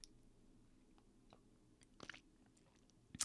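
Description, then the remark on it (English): A quiet sip of a martini: a few soft wet mouth clicks, then a brief, sharper slurp near the end. No one speaks. “I'm going to try to have a sip like I normally would.”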